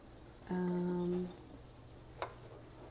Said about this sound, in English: I pour that down the sink, then I set them all up in rows, and then use the little sprayer on a low setting to fill them all up with water, and it makes things go way faster.